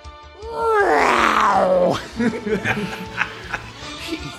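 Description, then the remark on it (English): A person's voice imitates a jaguar roar: one loud, drawn-out growling cry that rises and then sinks over about a second and a half, followed by softer talking and chuckling. “That's a Jag you are, not a Jaguar.”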